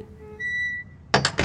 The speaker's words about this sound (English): Doors can be pretty scary, especially when they open, and especially when they close. So now for a sampling of door noises.